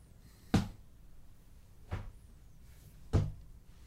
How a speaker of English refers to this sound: Footsteps, heavy. Metal, clanging against metal.